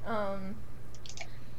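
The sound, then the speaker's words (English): A short voiced murmur, then a quick cluster of three or four soft, crisp mouse clicks over a low steady background hum, as someone clicks around to see how everything works. “I'm clicking around, seeing how this all works because it's been a minute.”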